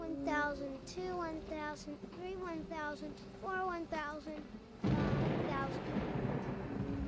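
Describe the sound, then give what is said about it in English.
Children's voices chatter and whine, then a loud, sustained rumble of thunder from a thunderstorm rolls in and fills the last few seconds, drowning everything out. “a thunderstorm causes the children to stay awake”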